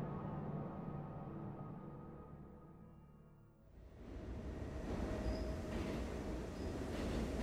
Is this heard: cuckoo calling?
no